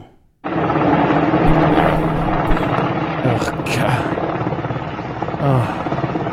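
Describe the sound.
A Black Hawk helicopter flown by the Taliban, with people hanging from it, roars loudly and steadily overhead, its rotor throbbing under a broad wash of engine noise that begins abruptly; a voice briefly exclaims over it.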